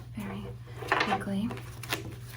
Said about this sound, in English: This is my new, just for you, Wormwood Corrupted Collection. Wormwood Corrupted Collection, just for you. All right. Now, I'm just going to very quickly shuffle the cards.